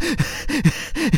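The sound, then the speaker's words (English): A voice imitates the heavy panting of someone running: three quick, rhythmic breathy gasps with a slight voiced edge, fairly loud, evenly spaced with no other sound around them. “So the camera is far away from someone and they're running, but you hear them panting like...”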